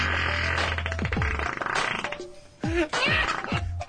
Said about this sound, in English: That's oblivious to the fact that my client did nothing wrong but fart in an abandoned warehouse.